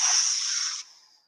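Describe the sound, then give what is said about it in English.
A single steady, breathy exhale during a stretching exercise on a foam roller, a soft hissing rush of air lasting about a second before tapering off quietly. “So I'm going to exhale.”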